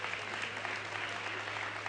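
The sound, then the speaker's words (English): An audience claps steadily for a couple married about 50 years, a dense, even wash of many hands with no pauses or peaks, along with a faint constant low hum beneath. “Somebody clap your hands for that.”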